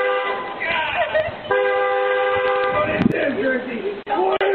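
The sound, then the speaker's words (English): A car horn honks in long, loud, sustained blasts in Nashville, filmed by a neighbor, with raised voices shouting over and after the honking. “The video, also captured by the neighbor, of obnoxious yelling and car honking”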